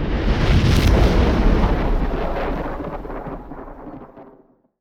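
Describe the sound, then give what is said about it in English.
A loud crack of thunder from a lightning storm breaks into a heavy rumble that slowly rolls away and fades over a few seconds, with no voices present. “Thunder cracks like artillery.”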